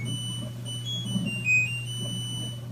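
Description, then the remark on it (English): A single short, shrill electronic beep sounds partway through, over a steady low appliance hum and faint high-pitched whine, with no one speaking. “Obviously, we've come a long way from those harsh beeps and buzzes.”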